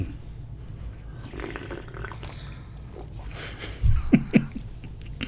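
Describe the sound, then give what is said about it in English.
Moist chewing noises of a meat stick being eaten over a low background rumble, followed near the end by a few short, louder swallowing or sipping sounds as a drink (aha) is sipped. “Nothing like following up a meat stick with a sip of aha.”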